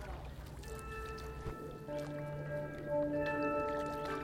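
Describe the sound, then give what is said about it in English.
A boat engine hums steadily with a droning, tonal whine over churning ocean water noise, the pitch shifting slightly as the boat pulls away out on the sea. No one speaks. “As the boat pulls away, like, in the distance, I see the divers and their buoys, and they're getting smaller and smaller, and I'm just holding onto the guardrail, and I'm looking out at the sea.”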